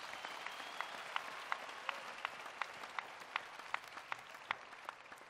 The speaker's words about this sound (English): Clap your hands for Jesus Christ if you can. I said, clap your hands for Jesus.